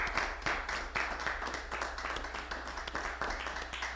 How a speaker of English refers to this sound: Can we give a hand clap for our online people and for our media team back there?